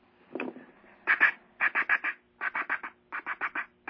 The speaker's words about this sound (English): Now, what's the sound you're making into the duck call when you're making that noise? Cuck, cuck, cuck. Like this.